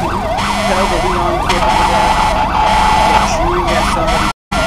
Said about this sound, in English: The sirens are so loud. Whoever has their sirens on.